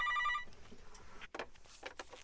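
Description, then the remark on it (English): A phone line rings once with a short electronic tone on an outgoing call from a reporter to a man's cell phone in Vanuatu, in the South Pacific, then cuts to a faint hissing line with soft clicks and rustles. “I made a phone call, I got his cell phone, and I rang him up.”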